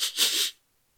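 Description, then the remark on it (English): A voice imitates eager sniffing: a short breathy intake followed at once by a longer, hissy one, about half a second in all, then silence. “"Come closer so that I can see your pretty face more clearly," said the trembling voice from the shadow, followed by an eager sniffing sound.”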